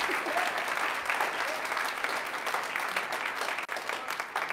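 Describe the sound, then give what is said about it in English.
Sustained applause from an audience, applauding again for the DC Labor Chorus after its music, a dense steady patter of many hands clapping at an even loudness throughout, with a brief dip near the end and no speech. “Yes, we'll just applaud again.”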